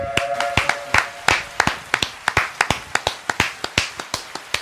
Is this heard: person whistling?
no